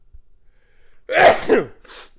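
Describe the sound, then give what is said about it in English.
A single loud sneeze bursts out after a brief quiet pause, with a sharp breathy onset and a short trailing exhale at the end. “Like, oh, I have to sneeze.”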